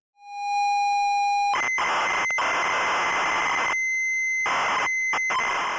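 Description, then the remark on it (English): Computer program data written by Seavey, encoded as modulated audio tones and pressed onto the B-side of a 45 record: a steady high-pitched whine for over a second, then a loud, harsh, hissing screech of modulated data broken by a few brief dropouts. “So Seavey wrote a program and converted it to the modulated audio tones.”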